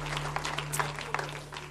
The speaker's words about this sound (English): Clap your hands one more time as you're being seated in Jesus' name.